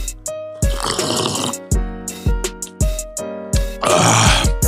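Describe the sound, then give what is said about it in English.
A series of wet, gurgling slurps through a straw from a Slurpee drink, several short sucking bursts with brief pauses between, fairly loud, and no talking. “I need another cup of this sip of this slurpee.”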